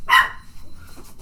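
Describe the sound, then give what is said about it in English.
A person imitates a dog with one loud, sharp bark, followed by a second of quiet background noise. “Bark with me if you're my dogs.”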